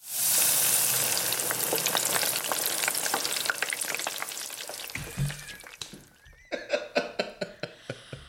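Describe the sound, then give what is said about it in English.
Food sizzles loudly in a hot pan, a dense, steady crackle that thins after several seconds into a series of sharper, separate pops and spatters. No one speaks. “Cue the sizzle.”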